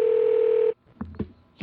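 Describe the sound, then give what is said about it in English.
A steady electronic phone ringback tone on an outgoing call holds for under a second, then cuts to near silence with a few faint clicks before the tone starts again at the end. “Oh, what was that little pre-message before the ring?”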